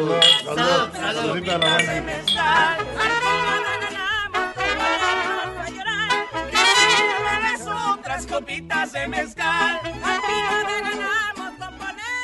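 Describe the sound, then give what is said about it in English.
A lively party murmur of many overlapping voices, with repeated bright clinks of glasses ringing out through the crowd noise, steady and fairly loud throughout; a party attended by film director Guillermo del Toro, with toasts of 'Salud' and 'Cheers'. “We've been at a party. We are at a party.”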